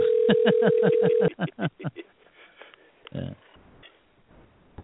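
A telephone being dialed to call someone back: a steady line tone with a quick run of rhythmic clicks for about a second, then muffled, thin sounds over the phone line.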